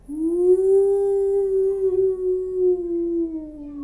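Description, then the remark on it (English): A voice imitates a ghost's wail: one long, loud, hollow "ooooh" held for about four seconds, its pitch steady and sagging slightly at the end, with no other talking. “Instead, a ghost floats out and makes a ghost sound.”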